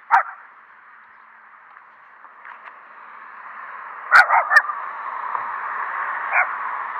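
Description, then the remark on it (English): A small dog on a walk lets out a few short, sharp yips at another dog, spaced a few seconds apart, with a quick pair near the end, over a steady hiss of outdoor background noise. No one speaks. “This little dog is trying to post up the dog.”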